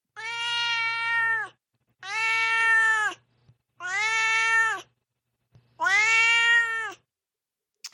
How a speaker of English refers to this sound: Let's move on to Duarte's Corner, where my cat Duarte shares his opinions about the book.